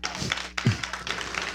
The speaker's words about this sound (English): You love the Lord, give the Lord a hand clap of praise.